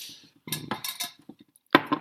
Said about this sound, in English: Let me also drink a little water here.